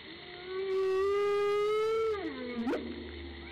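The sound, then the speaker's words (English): A humpback whale, recorded by Dr. Laura May Collado of the University of Vermont, gives a long, drawn-out tonal moan that holds steady, then bends downward and ends in a quick rising whoop over a faint underwater hiss. “and to Dr. Laura May Collado of the University of Vermont for her humpback whale recordings.”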